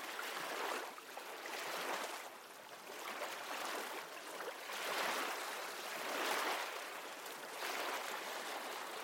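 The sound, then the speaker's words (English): Ocean waves wash in a steady rhythm, each soft surge rising and fading every few seconds in a continuous broad hiss, with no voices present. “Feel these affirmations blend with the ocean's rhythm, echoing the peaceful energy around you.”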